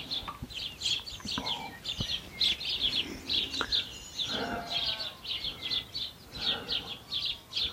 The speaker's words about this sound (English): As well as these sparrows, which there are a lot of, I think there's a family of robins about to fledge as well.